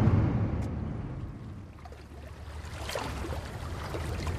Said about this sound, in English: So I've come to Scalloway. I've come down into the harbour area. There are various boats out in the water. They're involved in the seafood industry.